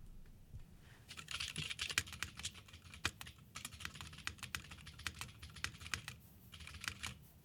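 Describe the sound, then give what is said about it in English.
Rapid typing on a heavy 7-pound mechanical keyboard, a steady run of sharp, clacky keystrokes with deep thocks underneath, fairly loud, with brief pauses between bursts and no talking. “I think I have to give a little ASMR test right now. Sure. I'm just going to type subscribe to Waveform.”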